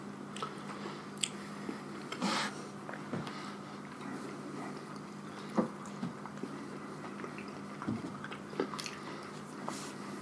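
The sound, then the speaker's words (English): Moist, squeaky chewing of food, with soft squishing bites and occasional sharper squeaks, like biting into cheese curds, repeating irregularly at a moderate level with no talking. “Is anyone else getting a little bit of squeak, almost like cheese curd, with this?”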